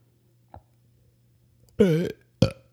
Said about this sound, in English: I couldn't get that burp out. You're nasty. I know.